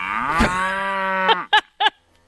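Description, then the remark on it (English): A cow lets out one long, drawn-out moo, loud with a rich buzzing tone, followed by two short, clipped lows in quick succession. No one speaks. “So, yes, it's good to know that in Florida, they are studying cows and their burps to make sure that we're all safe from...”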